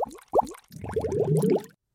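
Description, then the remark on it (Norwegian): Bubbling sounds in a jingle: a few separate watery plops are followed by a quick burst of rising, gurgling bubbles, like liquid bubbling through a tube, ending in a brief silence and one more pop. “Ok, da har vi hørt boblelyder.”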